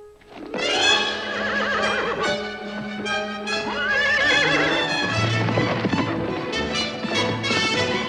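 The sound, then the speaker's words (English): A horse whinnies loudly amid rapid clip-clopping hooves as the film character Martha takes off on it, the sounds dense and continuous, with frenzied film music throughout. “But before that, there's a bit of frenzied music as Martha takes off on her horse.”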